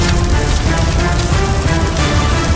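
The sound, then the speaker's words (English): Steady rain falls on a wet street, a dense, even hiss of droplets spattering the pavement, fairly loud throughout with no voices. “The street was wet from rain, and the flames sizzled out.”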